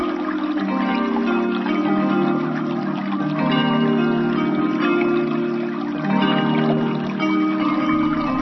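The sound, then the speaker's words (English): A babbling brook flows steadily, its bubbling, splashing water forming a dense, unbroken wash of sound with a faint tonal hum beneath and no one speaking. “Imagine that this little giggling brook is releasing and washing away anything you're holding on to that keeps you stuck or muddied, activating a balance of motion and stillness, opening circles into spirals of energy.”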